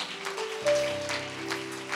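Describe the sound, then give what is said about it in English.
An audience claps for Jesus in a steady rhythm during worship, over sustained organ and band chords, the sharp claps sitting just above the music at moderate volume. “Clap for Jesus.”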